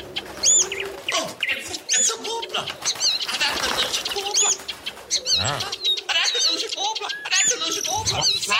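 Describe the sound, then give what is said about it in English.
A busy flock of pigeons coos, with wings flapping and higher chirping calls mixed in, a dense, continuous bird chorus throughout. “Get me on those pigeons.”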